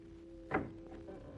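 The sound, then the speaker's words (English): The door of a house being tried and opened: a short wooden clunk, faint shuffling and rattling, then another brief thump at the end, all over a low, steady hum. No one speaks. “Door's open.”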